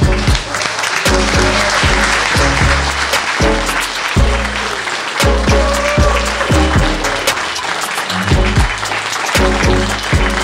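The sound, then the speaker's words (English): An audience applauds steadily for about ten seconds, a dense crackle of clapping, with rhythmic, tonal music playing underneath the whole time. “A big round of applause.”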